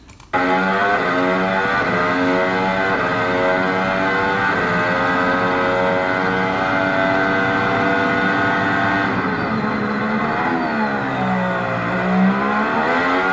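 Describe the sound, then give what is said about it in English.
A racing car engine screams loud, heard from onboard along the long straight between turns two and three, holding high, steady revs before the pitch dips and climbs again through gear changes near the end, approaching the next turn at about 330 kilometres an hour. “As you could hear from the onboard here, quite a long straightaway between two and three, so your approach speed into the turn is about 330 kilometers an hour, so a lot more perilous braking zone”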